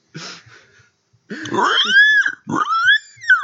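A pig grunts and oinks, a short snort followed by two loud, drawn-out squealing calls that rise and fall, with no talking.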